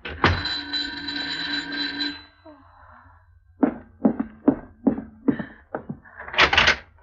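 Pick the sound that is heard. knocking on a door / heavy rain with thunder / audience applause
knocking on a door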